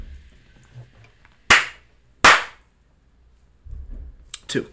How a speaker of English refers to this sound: What do you how many slaps are you giving it? You ready? Yeah.